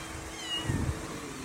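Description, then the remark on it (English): A small stray kitten on the side of a road in Louisiana gives one short, faint meow, with no one talking and only a low background hum around it. “this guy in Louisiana, stopped his car the other day to save a stray kitten.”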